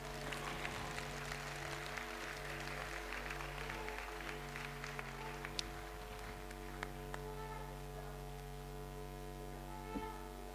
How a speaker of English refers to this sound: When you clap, please clap a little bit louder.